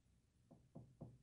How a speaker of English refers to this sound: You better knock wood.